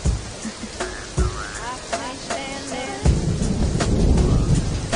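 A rain and thunderstorm effect: steady hissing rain with low rumbling that swells and grows louder halfway through, while faint voices murmur briefly near the start.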